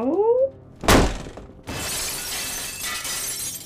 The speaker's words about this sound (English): It was a dame. Kicked my door in. Impatient lot, dames.